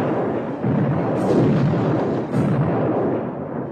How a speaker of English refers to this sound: Mexicans charged the Alamo from all sides. The men, still drowsy with sleep, leapt to their battle stations as the Mexican troops blasted the walls with suppressing musket and cannon fire.